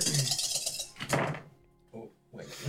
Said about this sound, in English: Lots of dice fell out.